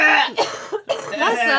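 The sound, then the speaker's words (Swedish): A person coughs twice in short, sharp bursts, with throaty vocal sounds and a bit of throat clearing between and after the coughs. “Efter hostpaus.”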